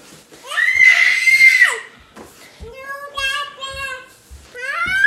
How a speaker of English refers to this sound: Stop screaming. Stop it.